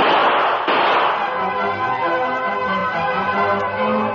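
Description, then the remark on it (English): Two sharp, loud gunshots about half a second apart, fired during a holdup by masked bandits, each bursting across the whole range, followed by a sustained, ringing tonal wash that fades slowly with no talking. “Hey, Tonto, those were shots.”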